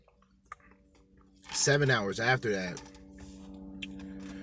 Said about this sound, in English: Then 7 hours after, 7 hours, excuse me, drink some of this fucking water.